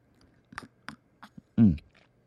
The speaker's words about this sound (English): And as tradition states, I have to slurp.